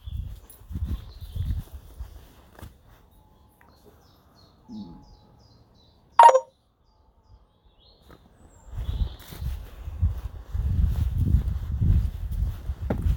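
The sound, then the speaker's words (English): Footsteps crunch along through woods while a single sharp, bright bird call rings out midway, with faint chirping in the quiet between steps. “Don't know if the mic picks up the bird song.”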